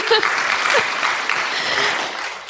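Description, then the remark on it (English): A crowd applauds steadily, a dense wash of many hands clapping at once, loud and sustained throughout, with faint voices mixed underneath. “Yeah, that's worth a clap.”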